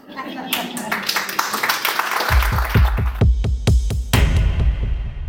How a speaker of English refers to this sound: The applause sounds good in a podcast